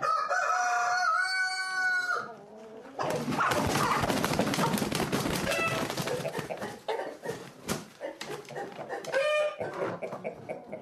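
rooster crowing

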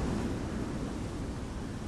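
sea waves

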